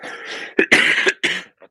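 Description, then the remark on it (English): A loud cough in a short burst: a raspy throat-clearing rumble followed by two or three sharp, explosive coughs and a faint trailing breath, with no talking. “I intentionally waited until you're about to cough to ask you that question.”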